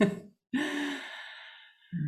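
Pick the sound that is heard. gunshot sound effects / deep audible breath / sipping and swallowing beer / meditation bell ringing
deep audible breath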